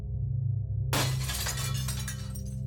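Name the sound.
glass shattering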